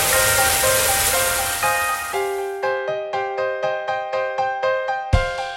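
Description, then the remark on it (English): Water gushes steadily from a bathroom tap for a couple of seconds, then gives way to a quick, regular run of ringing, pulsing tones and a dull thump near the end. “I pulled back the shower curtain, turned on the water, and peed into the bathroom.”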